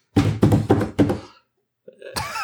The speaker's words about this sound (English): I just beat on the desk. It moved everything.